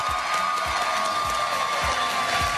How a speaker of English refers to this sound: I've been told that if we all clap really hard, we're gonna have Zack Snyder on.